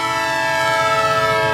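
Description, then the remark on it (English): A loud passing train blares a steady, droning horn, the harsh chord-like tone holding unbroken throughout with no voices present. “Okay, so every since time I'm sitting here, every time that train goes by. Oh yeah. Because it's so loud.”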